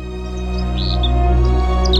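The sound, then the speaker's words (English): Several short, clipped red crossbill call notes chirp, scattered irregularly over a steady low droning background. “The red crossbill, today's Talkin' Birds featured feathered friend.”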